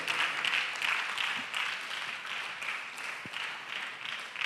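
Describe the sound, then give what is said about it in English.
An audience claps together, a dense, steady patter of many hands that holds for several seconds at a fairly soft level, with no voices over it. “Oh, you can do it better. Let's clap.”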